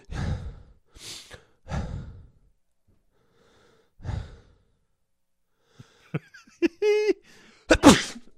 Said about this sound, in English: Well, God bless you